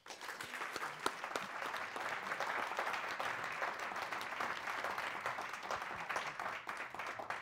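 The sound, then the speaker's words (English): A crowd at a City Club of Cleveland event applauds steadily, dense overlapping claps forming a sustained wash of sound that holds at an even, moderate loudness for several seconds with no voices. “Usually I ask the audience to applaud themselves for being here, so why don't you give yourselves another round of applause?”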